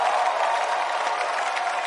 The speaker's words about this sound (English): Give the Lord a clap over here.